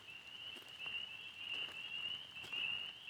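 A dense chorus of spring peeper frogs where a road crosses a stream, high shrill peeps blurring into a steady drone, over a background hiss of rushing water, light rain and wind in the trees. No one speaks.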